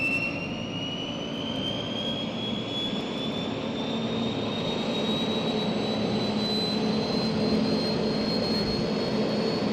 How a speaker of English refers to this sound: We hear now an F-100 being started up. The first sound is the mobile starting engine, followed by the familiar rising whine of the jet turbines.